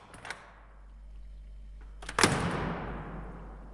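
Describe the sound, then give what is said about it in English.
A latch clicks early on, then a door swings open with a loud, airy rush that fades slowly into a low hum. No one speaks. “I opened the door.”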